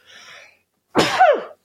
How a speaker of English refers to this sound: Excuse me. I'll just leave that in. People want to hear me sneeze.